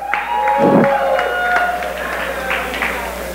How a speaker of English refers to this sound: Let's clap for him.